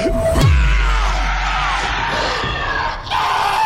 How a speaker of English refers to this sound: The lusty, full-throated roar you hear comes from the monster chomping into Frankie's terrified face, screaming and gurgling